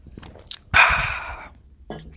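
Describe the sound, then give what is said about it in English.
A loud slurp of someone sipping a drink from a glass, a short noisy gulp lasting under a second, followed by a faint breath and a small mouth sound near the end. “Let me just have a sip from my glass.”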